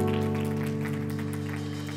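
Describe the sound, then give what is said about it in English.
An audience at Triumph Church claps during offering time in a dense, steady patter over sustained, droning keyboard chords that hold at an even level throughout. “you can clap for that.”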